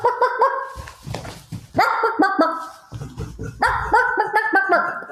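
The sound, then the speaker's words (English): A golden retriever in a truck barks excitedly and prances as BNSF rail cars go by, giving three rapid bursts of high, harmonic yips and barks, loud, with brief pauses and a bit of whining between them. “In the truck in front of me, there was a golden retriever holding court as these BNSF rail cars went by. He was barking and prancing, and he...”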